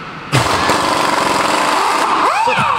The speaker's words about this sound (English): So I took the car over to the neighborhood mechanic. A lot of men in there doing manly things with drill guns.